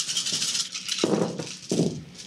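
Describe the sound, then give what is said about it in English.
Dice are rolled during a game, rattling and clattering across a surface in several overlapping bursts, a busy rolling noise that comes in waves with sharp onsets, with no voices. “Okay, let's roll.”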